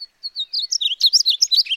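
A painted bunting sings a rapid, bright warbling phrase of high, tumbling notes, clear, with no other sounds around it.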